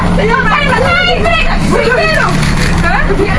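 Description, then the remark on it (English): Several passengers at the back of a local bus shout and talk loudly over one another in a constant overlapping babble, above the steady low rumble of the moving bus engine. “Why does it have to be that much shouting at the back?”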